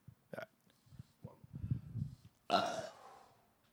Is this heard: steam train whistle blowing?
no